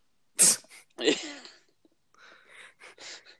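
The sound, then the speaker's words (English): Heavy breathing into the microphone: two loud, gusty, hissing breaths in quick succession, followed by several softer, rasping breaths trailing off. “Bit of heavy breathing going on there.”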